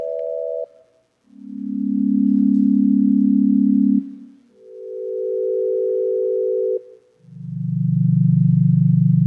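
Sonified humming of stars, each star humming at a different frequency: a sequence of steady, electronic-sounding drones, each held a couple of seconds, alternating between higher and lower pitches and swelling in loudly with no voices.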